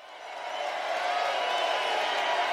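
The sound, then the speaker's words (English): A large concert crowd at the Mission Ballroom applauds and cheers after a jam on a Saturday night show, a dense wash of clapping and voices swelling in the first second and then holding steady and loud throughout. “You can hear the crowd seems to have enjoyed it. Great applause at the Mission.”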